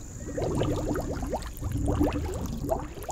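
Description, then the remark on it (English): A female snapping turtle, just put back in the water, blows bubbles that gurgle up in two quick bursts of rapid, burbling pops, fairly loud, with a faint watery hiss in between and no talking. “We feel bad and a little scared, so we put her back in the water where she happily blows bubbles.”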